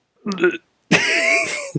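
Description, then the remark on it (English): A short cough with a throaty, clearing quality, followed after a brief pause by a longer, rough voiced burst that trails off. “But I'll cough?”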